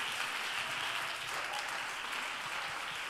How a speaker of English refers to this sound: Somebody ought to clap your hands right now.